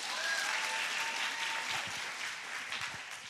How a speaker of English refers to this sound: Okay, on the count of three, I need everyone to just clap really loud. Ready? One, two, three.